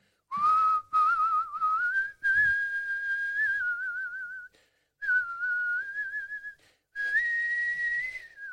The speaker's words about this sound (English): Oh my God! How you got a whistle like that?